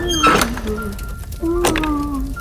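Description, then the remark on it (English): A door being locked: two sharp metallic clunks about a second apart, each with a brief squeaky ring, fairly loud over a low background hum. “Just gonna lock the door.”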